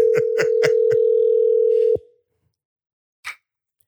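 A steady electronic phone tone hums for about two seconds as a call is placed, with several sharp clicks over it, then cuts off into silence, followed by one brief soft rustle. No one speaks.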